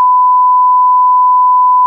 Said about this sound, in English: Can we beep that, please?